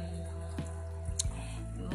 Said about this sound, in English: Kita panggil like mini kolam or waterfall maybe. So which is there are some fish that's my family keeps, huh?